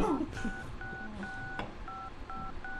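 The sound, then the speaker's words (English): The nursery tune Mary Had a Little Lamb tapped out on phone keypad tones: a steady run of short, fairly loud beeps in a sing-song rhythm, with faint voices briefly underneath at the start. “Oh, yes, Mary had a little lamb.”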